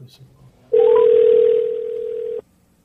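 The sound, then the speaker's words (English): A single steady electronic phone ringing tone sounds loud for under two seconds, then cuts off abruptly, with only faint background noise before and after. “It's going to be over here, so you can hear the ringing.”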